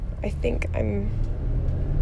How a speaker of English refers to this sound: The car got really quiet. I'm at a stop sign now.